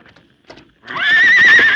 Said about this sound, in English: Come on, let's get that horse.